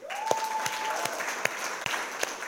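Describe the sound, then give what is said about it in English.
A church audience claps for the worship team and the sound and lights crew in a steady, dense wash of applause lasting the whole clip, with a few sharper claps standing out and a thin sustained whistle-like tone early on. “So I want you to know, all this worship team and sound and lights, can you thank them?”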